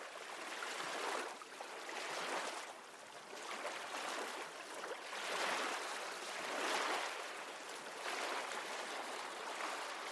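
nature, ocean waves

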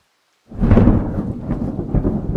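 nature, thunder booming

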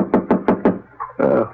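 household object, knock on a door

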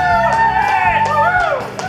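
crowd, cheering and whooping

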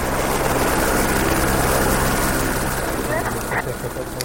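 vehicle, helicopter landing

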